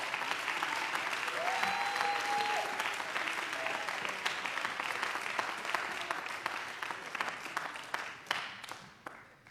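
audience clapping

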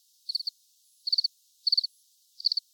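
crickets chirping sound effect

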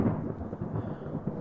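thunderstorm with heavy rain

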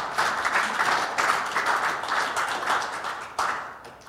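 audience clapping and applauding

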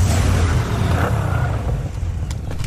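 car pulling up

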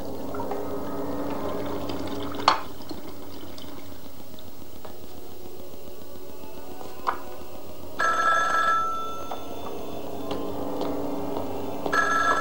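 telephone ringing

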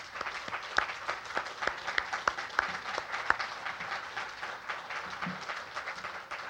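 round of applause

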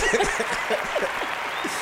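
round of applause

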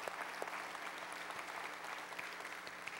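audience applause

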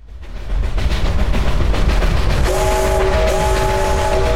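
train sound effect

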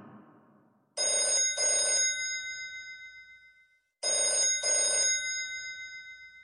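telephone ringing

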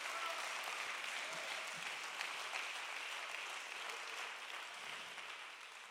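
audience clapping hands

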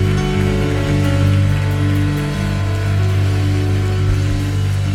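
audience clapping hands

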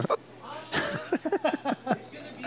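hiccup

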